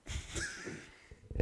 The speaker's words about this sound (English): Oh, he's clearing his throat.